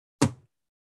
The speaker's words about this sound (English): Man, I just slammed my book.